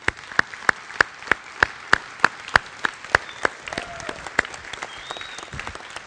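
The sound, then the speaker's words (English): In a church, the men stand and applaud steadily to thank the women of the church, with one set of loud, close hand claps standing out in a quick, regular rhythm over the softer wash of clapping around it. “As a matter of fact, I was going to ask all the men, if you wouldn't mind, would you stand with me and applaud and thank God for the women of this church?”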